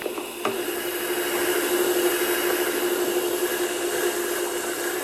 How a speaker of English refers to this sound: Vacuum, please.